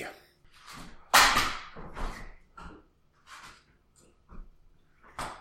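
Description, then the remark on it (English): A man bangs around in his kitchen: a string of irregular clattering bangs and thuds, like pots and cupboards being knocked about, with one sharper loud crash near the start and quieter knocks between, no talking. “He's banging around. Oh, good. Sounds like he's in a fight with his kitchen.”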